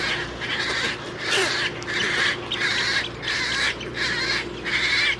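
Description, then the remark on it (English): A rhythmic run of about seven harsh, raspy bird calls repeats roughly every half second over a constant wash of background chatter and low hum, at a nesting colony of herons, egrets, roseate spoonbills and wood storks. No talking. “it's also a major nesting area for herons, egrets, roseate spoonbills, and wood storks”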